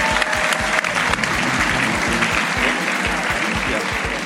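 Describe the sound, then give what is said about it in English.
Sustained audience applause, a dense wash of many hands clapping steadily at a loud, even level throughout, with a few scattered cheers mixed in. “I'll give you a big round of applause for being a fantastic audience.”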